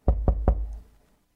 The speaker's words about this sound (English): When they arrived at room 140, the Do Not Disturb door hanger dangled from the knob. But it was 11 a.m., and the guests should have checked out by that time. A housekeeper knocked.